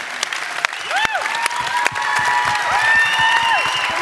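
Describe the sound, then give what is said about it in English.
An audience applauds in a dense, steady wash of clapping that grows slightly louder, with a few sharp claps standing out and high, sliding whistles rising and falling above it. “Ladies and gentlemen, let's give it up”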